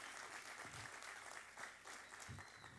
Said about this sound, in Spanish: ¿Cuántos se sienten orgullosos de esta iglesia, de su iglesia? Dale fuerte, un fuerte aplauso al Señor por tu iglesia, por los pastores que tenemos.